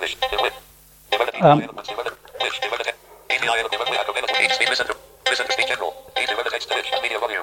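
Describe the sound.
A text-to-speech voice on an Android phone speaks in quick, clipped bursts separated by short pauses, sounding thin and tinny as if played through a small handset speaker.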